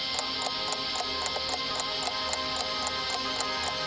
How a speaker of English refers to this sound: If I could just get rid of the bloody ticking and the talking and the ticking and the talking. It's like this merciless metronome reminding me of all the time that's passed.